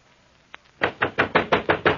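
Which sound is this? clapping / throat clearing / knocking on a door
knocking on a door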